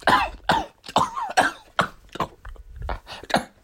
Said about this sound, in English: Sorry, I've had this cough the last few days. Don't know what's going on here. I have quite a fever